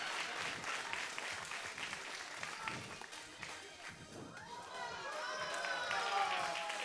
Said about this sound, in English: Can you guys count to three for me? One, two, three. Okay, most people clap when they see something amazing like this.